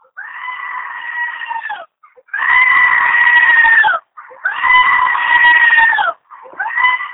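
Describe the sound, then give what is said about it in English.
Goats scream loudly from a computer in long, wavering, human-like bleats, about four drawn-out cries in a row with brief gaps between them, harsh with no talking. “I'm assuming that's screaming goats.”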